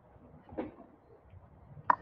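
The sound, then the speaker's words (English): A spice drawer slides open, with a brief soft rumble followed by a sharper knock as it stops, faint against otherwise quiet surroundings. “Who wants to see my spice drawer, by the way?”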